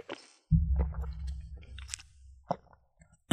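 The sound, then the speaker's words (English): Someone gulps down water, with a low, muffled swallowing rumble followed by a few wet clicks and a sharp sound at the end. No one speaks. “Are you chugging water there?”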